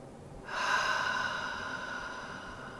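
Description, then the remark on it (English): A single deep, airy breath drawn in during a guided relaxation exercise, starting abruptly and holding steady and fairly loud for a couple of seconds, with no talking. “Good, nice deep breath, and just let go of all the rest.”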